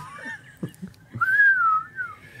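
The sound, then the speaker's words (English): A thin, airy whistle slides up and wavers around a single pitch for about a second, drawn in on an inhaled breath, fairly soft, with small breathy sounds before it. “I can inward whistle.”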